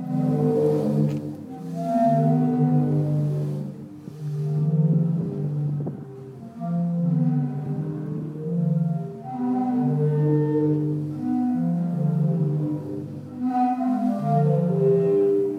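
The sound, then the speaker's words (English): The Zadar Sea Organ in Zadar, Croatia, on the Adriatic coast, played by waves: overlapping, breathy organ tones that swell and fade in irregular surges, low to mid pitched chords sounding steadily without voices. “But before we get started, let's let you hear a bit of the Zadar Sea Organ, which is one of its most famous sites.”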